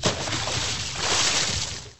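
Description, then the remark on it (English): A live recording of a loud splash of a person jumping into a lake, a broad rushing burst of water that churns for about two seconds before fading, with no voices. “If we had to take a guess, who jumped there to make that splash? Actually, we recorded that. That was a live recording.”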